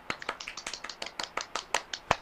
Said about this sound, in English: Golf clap, golf clap.